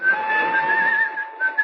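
A man whistles a short, steady tune as he makes his way through the weekend-bound crowds of Waterloo Station on a fine, clear Friday, the clear pure tone wavering slightly in pitch over a faint murmur of background noise.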